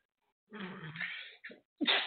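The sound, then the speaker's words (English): A man's loud sneeze bursts out after a brief silence, followed by a short gasp and a second sharp exhale, all within about two seconds; he tried to hold it back and did not get his elbow up fast enough. “I was trying to hold it back, and I didn't get my elbow fast enough, but you're right.”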